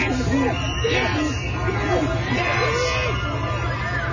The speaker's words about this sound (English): and they are cheering and yelling and screaming, and so much so that the president was moved to leave his hospital room, get in an SUV, and do like a drive-by where he waved at all of his supporters. And man, they lost their mind.